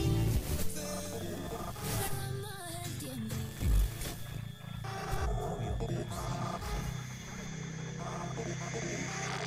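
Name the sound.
big cat roaring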